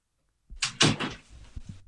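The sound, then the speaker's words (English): A door is pushed shut: a brief scrape, then a solid thump and rattle of the latch, trailing off into a few soft knocks, with no one speaking. “I just had to shut the door because they guaranteed the dog will jump on the bed.”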